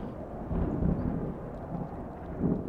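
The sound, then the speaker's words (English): A deep, rolling rumble of thunder from lightning arcing through the clouds and striking towards the ground swells and fades for a few seconds, heavy in the low end with a steady wash of storm noise and no voices. “And you're watching as the lightning from it is arcing off of him and through the clouds and then striking towards the ground.”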